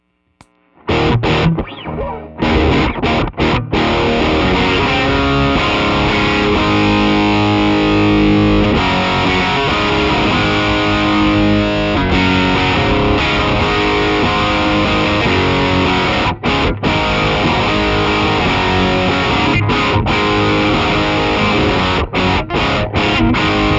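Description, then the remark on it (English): An electric guitar plays continuously through a Tube Screamer overdrive (drive rolled back, volume fully up, tone at about 3 o'clock) pushing into a Riot distortion pedal with its distortion rolled way back, giving a loud, thick, saturated tone with sustained chords and brief gaps, no voices present. “All right, so that's not like I rolled the distortion way back on the riot, but you can push the Tube Screamer into it.”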